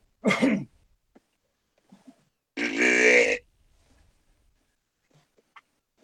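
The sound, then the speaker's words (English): Two deer grunt calls made by a person in the woods to get a deer's attention, with a pause between: a short, throaty first grunt, then a longer, raspy, buzzing grunt lasting under a second. Quiet otherwise, with no talking. “So first sound I'm going to do is going to be just a simple grunt, you know, just something to get a deer's attention.”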